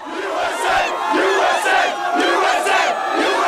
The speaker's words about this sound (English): Back in the U.S., people poured out in the streets to celebrate bin Laden's death.